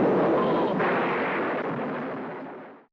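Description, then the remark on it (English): A thunder sound effect from a film replaces a cut line of dialogue. The loud, rolling crack of thunder rumbles steadily for nearly three seconds, then fades away. No voices are heard. “So it was replaced by the sound of thunder.”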